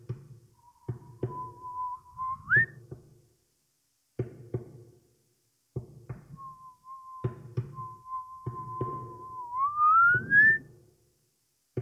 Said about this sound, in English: Suddenly, there's a faint whistle all the way out, and it's changing tune.